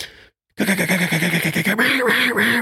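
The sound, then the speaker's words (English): A duck call rattles out a fast, continuous run of loud, nasal quacks in quick rhythmic chatter, following a brief silent pause. “can still get in there and chatter and be part of that.”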